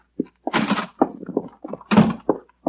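Hurried footsteps thump up wooden stairs from a house's garage to the inside door in an uneven rhythm of heavy, knocking impacts, with a door being handled among them. No voices are heard.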